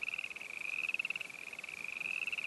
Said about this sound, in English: More frogs than I thought could exist in the entire forest.